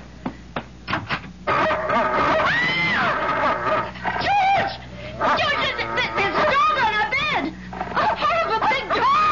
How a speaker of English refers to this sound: It's only a dog, for pity's sake. He's not gonna hurt you.